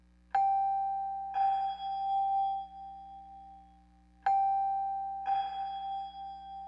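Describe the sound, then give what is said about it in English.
A Mellotron M4000D Mini playing its Celeste sound gives a bell-like two-note figure twice, each chiming strike heard dry and then ringing out in a lo-fi room reverb over a steady low hum, with no voices. “It's neat because you hear the initial dry sound, and then the reverb happens, and it's lo-fi and in a room tone.”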